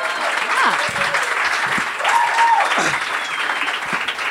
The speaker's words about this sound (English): Is there anyone, by round of applause, who's heard the podcast before? Clap your hands.